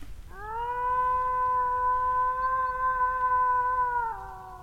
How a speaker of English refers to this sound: a damn good howl.